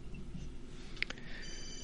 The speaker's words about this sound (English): Phone ringing.